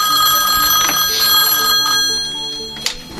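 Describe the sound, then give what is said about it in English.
A telephone rings loudly and steadily, a bright trilling bell tone that carries on for a few seconds with no one speaking over it, as a call comes in on a call-in line after the ringer was turned back on. “There we go. Phone's ringing.”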